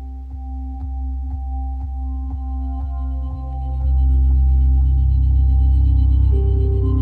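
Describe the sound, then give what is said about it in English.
An Echo smart speaker plays room calibration tones during setup, tuning itself to match the acoustics of the room: a steady run of short electronic pings, about two per second, over a low hum, swelling into a louder, fuller tone partway through. No one speaks. “Just a moment while I tune your Echo to match the acoustics of this room.”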